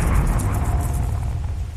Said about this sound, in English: As Jeremy took in the ominous words, a nearby lightning strike lit the entire hallway in stark whites and blacks, blinding Jeremy and deafening him with the crash of thunder that followed in its wake.